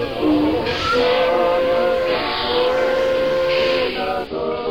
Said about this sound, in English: I planted myself in a train seat. There was an awkward heave of the cars, a potent chug or two, and the Big Rock Candy Special ambled out of the station.